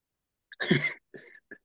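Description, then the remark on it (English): A fairly quiet cough from someone with a mild illness: one harsh burst followed by two shorter, softer coughs, with no talking around it. “Carrying a little daycare thing going on, a little daycare illness, a little sniffle, a little cough, a little whatever.”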